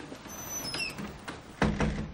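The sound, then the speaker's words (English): A door creaks open with a thin, high squeak of its hinges, followed by a couple of solid wooden knocks as it swings and settles. “Opens the door back down.”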